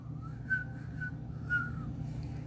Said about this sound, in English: I can't whistle, sorry.